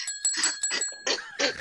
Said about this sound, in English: Hit the bell.